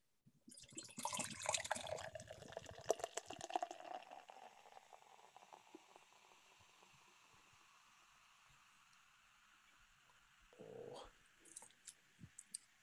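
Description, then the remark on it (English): A triple beer is poured into a glass, starting with a loud, bubbly glugging rush that tapers into a long, soft fizzing hiss, with a few faint clinks and taps near the end. “And with that said, let's pour it.”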